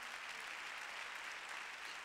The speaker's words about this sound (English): There's somebody in here who wants to go higher. If I'm talking about you, clap your hands and praise God.